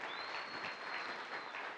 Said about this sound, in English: You guys give them a round of applause for coming out.